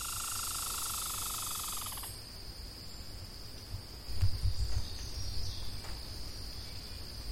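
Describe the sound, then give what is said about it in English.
A dense chorus of crickets chirping at night, recorded at 11:45 p.m., fills the first two seconds, then cuts to the same location at 6 a.m.: a thinner scene with one steady high insect trill, faint scattered bird chirps and a low background rumble. “Birds only make sounds at certain parts of the morning, while crickets only come out in the evening.”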